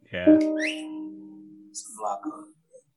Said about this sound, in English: I love the whistle.